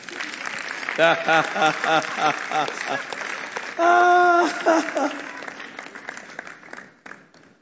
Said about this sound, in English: And you clap too.